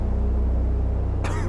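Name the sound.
a single cough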